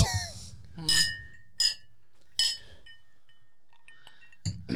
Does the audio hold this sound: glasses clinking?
yes